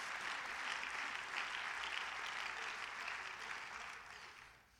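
A crowd claps steadily to thank God for his promise, a dense, continuous wash of many hands that holds strong for several seconds, then gradually thins and fades out at the end.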